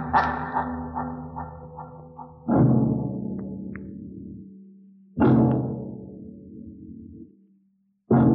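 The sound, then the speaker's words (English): Heavy, booming bangs on a rocket's metal entryway door strike slowly about four times, each loud blow ringing and echoing before fading, with no one talking; from the radio drama Mars's Heaven on Dimension X, aired July 7th, 1950. “The banging on the rocket entryway as the sound fades out never fails to give me the creeps.”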